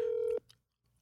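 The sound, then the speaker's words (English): A phone call tone as a call is placed and declined: one loud, steady electronic beep lasting about a third of a second, then near silence with faint background hiss. No one speaks. “You want me to call him right now?”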